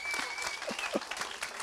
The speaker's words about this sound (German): Jetzt können wir Applaus machen. Okay?